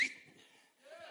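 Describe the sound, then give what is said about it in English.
A short, sharp high whistle bursts out right at the start, then fades into soft breathy noise, with a faint rising whistled tone near the end. “I'm going to whistle, you kick your leg.”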